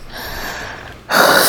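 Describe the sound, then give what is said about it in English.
A soft, breathy exhale gives way to a sudden, loud, rasping gasp for air, performed by a voice imitating someone struggling to breathe. “And then he started to gasp.”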